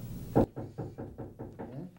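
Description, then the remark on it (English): A loud thump, then a quick run of about seven evenly spaced knocks on a door, steady in rhythm, with no voices. “All right, someone's here at the door.”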